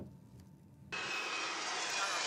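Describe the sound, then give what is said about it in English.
On a landing strip at Buenos Aires Airport, Argentina, after a moment of quieter low rumble, a loud aircraft engine roar cuts in abruptly and holds steady, a broad hissing blast with a thin high-pitched turbine whine running through it. “It's on this landing strip in Buenos Aires Airport that this Skyfan plane used to take off by night to operate the sinister death flights during the military dictatorship.”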